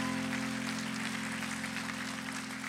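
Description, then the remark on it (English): An audience at a church service claps in a steady, continuous wash of applause after being asked to clap about repenting and turning to Jesus, with a sustained low droning tone, like an organ or keyboard chord, held underneath the whole time. “Come on, clap today if you know what it means to repent and turn to Jesus.”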